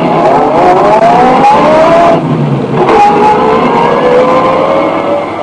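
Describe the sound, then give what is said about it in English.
A car engine revs up and accelerates away as the car is driven off, loud, its pitch climbing, dipping briefly as if shifting gears, then climbing again. No voices. “Then I staggered over to my car, got in, and drove off.”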